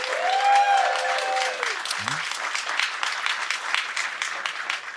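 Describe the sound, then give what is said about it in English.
A large audience bursts into sustained applause, dense and steady across the whole stretch, with a brief voiced cheer or whoop riding over the clapping at the start, clapping to vote 'no' on whether wokeness is killing comedy. “Now clap if you think, no, wokeness is not killing comedy.”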